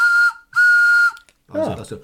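Two steady, breathy blasts of a Minnie and Mickey Runaway Railway toy train whistle, one short and one longer, each holding a single bright tone with an airy hiss, followed by a brief burst of someone speaking.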